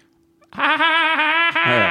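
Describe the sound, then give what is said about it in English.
A voice imitates a woman's dolphin-like laugh: one loud, high-pitched squealing burst with a warbling chatter, briefly breaking before a final squeal. No talking. “Yeah, and obviously the other thing we had was a woman with a very unusual laugh, didn't we? Do you remember? Dolphin laugh.”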